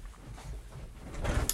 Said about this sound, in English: Sorry, that's the door. I went all the way upstairs. My dog was totally fine. I feel like it was just an Amazon delivery guy.